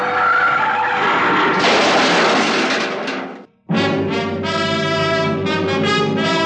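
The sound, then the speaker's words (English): The brakes of a car doing about 60 near a bridge toll gate slam on, and the tires skid with a loud, shrill screech. The squeal cuts out briefly, then a second long, piercing skid follows, with no talking. “I took my foot off the accelerator and then jammed down on the brakes as hard as I could.”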